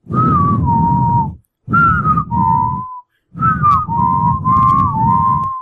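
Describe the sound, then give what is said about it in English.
A person whistles Epona's Song, a tune from the Zelda video games, in three short phrases with brief pauses between them, the clear tone sitting over a breathy, rumbling background. “There, bam, whistling always”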